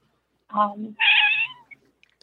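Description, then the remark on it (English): A cat lets out a loud, drawn-out meow in two parts, the second higher and more insistent, with no talking over it. “Sorry, the cat's yelling at me.”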